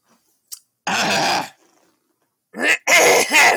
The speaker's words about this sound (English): Hey, let me clear my throat.